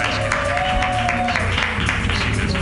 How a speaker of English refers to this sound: Clap right now wildly